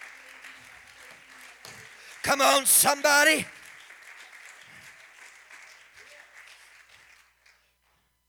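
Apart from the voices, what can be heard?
audience clapping hands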